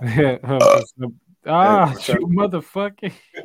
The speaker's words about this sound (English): But yeah, these niggas on the air having a burping match, just burping at each other.